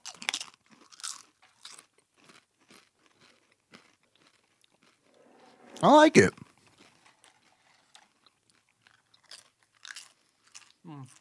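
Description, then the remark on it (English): Crisp, crackly crunching of salted El Torito tortilla chips comes in short irregular bursts throughout, with a louder burst midway as a voice speaks briefly. “But I say, these are like Mexican restaurant chips.”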